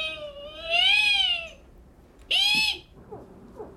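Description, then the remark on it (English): Actor Harlan Williams, in a film scene, imitates whale sounds with his voice: two drawn-out, high, wavering wails, the first long and arching, the second shorter and falling, followed by faint squeaky tail-offs. “Is it a biologic? Sounds like a whale.”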